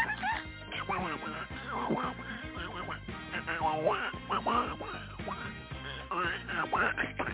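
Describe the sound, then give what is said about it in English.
Raspy, duck-like quacking calls like Donald Duck come in quick, chattering bursts for several seconds, loud, with a steady background hum underneath. “It's like Donald Duck, babe.”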